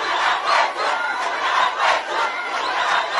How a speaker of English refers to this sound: They shouted at the leadership demanding the release.